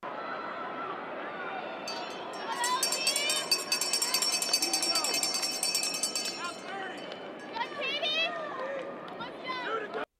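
A last-lap bell sound effect played from a soundboard clangs rapidly and continuously for several seconds, bright and metallic, over a noisy crowd with chatter and cheering that carries on after the ringing stops.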